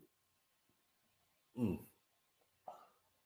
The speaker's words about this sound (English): Mm. He's hiccuping. He's hiccuping. That he is. Yes. Woo! Wow. Yes. His tongue is blue. He is hiccuping as we speak.